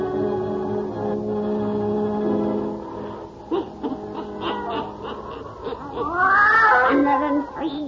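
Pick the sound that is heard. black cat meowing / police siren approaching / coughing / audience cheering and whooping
black cat meowing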